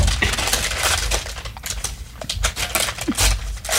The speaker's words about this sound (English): excellent sound effects for our audio. Oh, for our audience. Nice. We're opening a paper bag.